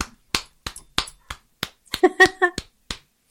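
About ten sharp hand claps applauding a guest at the end of a radio program, in a loose, uneven rhythm, with a brief vocal sound mixed in near the end of the clapping.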